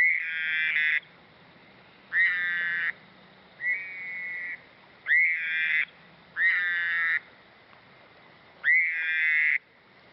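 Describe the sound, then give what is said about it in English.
Toad mating calls ring out in six loud, high, trilling bursts, each under a second long, repeating at a steady pace over a faint background hum with no talking. “A sexy soundtrack to put any toad in the mood to mount.”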